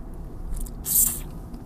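A single quick sip of water: a brief wet, hissy slurp in the middle of an otherwise quiet moment, with no one talking.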